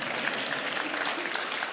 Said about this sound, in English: The gospel is red, yellow, black, and white because all are precious in his sight. You can clap for that. That's fine.